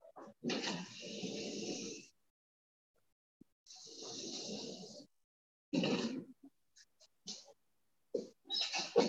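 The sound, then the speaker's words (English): A cat being let out of a room: several loud, rough bursts of noise, each lasting a second or two, separated by pauses and ending in a quick flurry of short sounds. No one talks. “Just letting my cat out.”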